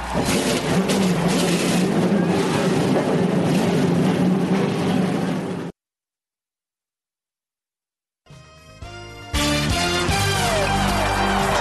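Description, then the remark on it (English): A loud, dense roar of many NASCAR Winston Cup Series stock car engines at the Aaron's 499 at Talladega Super Speedway rumbles and revs, cuts to silence for a couple of seconds, then engines fire up again and climb to a full, rising roar. “Gentlemen, start your engines.”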